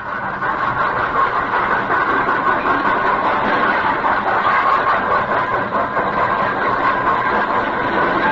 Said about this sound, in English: The story properly begins on Christmas night, 1918, 19 years ago. A leave train was just coming to a halt in the station at Villefranche.